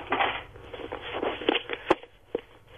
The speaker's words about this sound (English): I dropped my keys. It didn't sound like keys. It sounded like you're doing the washing up.